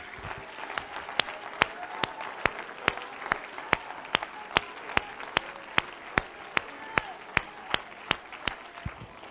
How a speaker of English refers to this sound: Go ahead and clap your hands to the Lord and give the Lord a shout of praise.